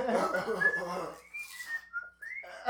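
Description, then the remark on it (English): A person whistles a short, wavering tune of a few sliding notes, clear, following a brief burst of muffled voices and background clatter. “It just whistling.”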